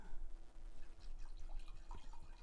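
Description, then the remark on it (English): Wine pours from a 2021 bottle, a soft, steady trickle broken by small glugs and drips, quiet, with no one speaking. “All right, wine pour.”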